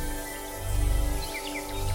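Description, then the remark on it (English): A few short, high bird chirps flutter briefly over a steady low drone and hum, soft beneath the sustained background tone. “You hear the sound of very distinct bird song.”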